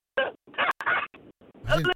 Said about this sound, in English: We didn't hear the punchline because guys, I'm really sorry. I mean, I don't know. We must have appeared really rude there. We didn't laugh. But we didn't hear it because the line again went bad.